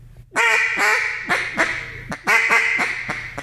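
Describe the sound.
A duck call blown in a run of loud, nasal quacks imitating a hen mallard, a fine-hen call, two descending sequences of sharp notes with no talking.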